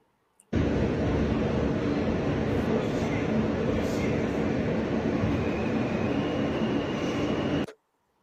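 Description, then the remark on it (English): A steady, loud rumble of a subway train, played from a video of a subway alarm clock, runs for about seven seconds, dense low-frequency roar with faint higher whines, starting and stopping abruptly. “So we're going to show this video of the subway alarm clock.”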